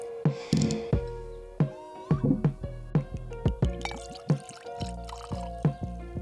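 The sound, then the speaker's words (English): A drink being poured into a glass, with glugging bursts and splashy drips repeating irregularly as the liquid fills, fairly clear with no talking. “Decent pour.”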